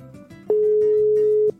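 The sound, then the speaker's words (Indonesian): A phone ringback tone sounds once, a steady, fairly loud one-second beep heard while a call to a doctor connects, over a faint, quiet background hum. “Oh, kita telepon.”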